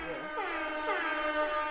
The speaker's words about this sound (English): Let me get an air horn for that.